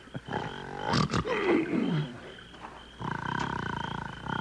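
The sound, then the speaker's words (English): A man snores loudly with rough, rattling, growl-like breaths: a long rasping snore sliding downward in pitch, a brief pause, then another steady rumbling snore. No one speaks. “He looks more like a grizzly bear snoozing through the winter.”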